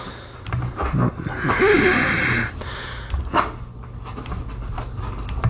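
dog barking and panting

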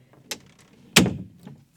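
door being closed

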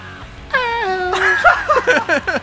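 screamed vocal

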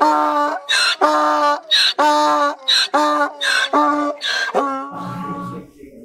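shofar being blown

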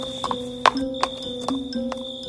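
horse hooves clip-clopping

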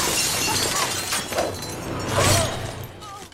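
glass breaking

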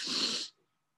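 sniffling

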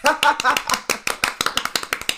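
small group clapping

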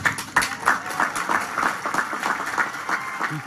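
audience applause

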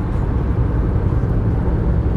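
car road noise

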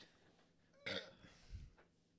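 burp into the microphone

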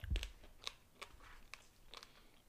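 munching and chewing food

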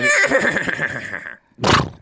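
horse neigh

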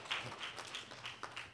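audience clapping

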